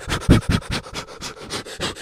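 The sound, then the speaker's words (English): Short, breathy puffs of air blown across a vinyl record, about ten quick bursts in a steady, rapid rhythm, hissy and fairly loud, with no talking. “I reamed it. Now I've got to blow it.”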